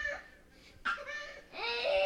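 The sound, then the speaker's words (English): A young girl who fell and hurt her head screams and cries in loud, high-pitched wails, three strained bursts with rising, quavering pitch and brief catches of breath between them. “I can't hear you over the screaming.”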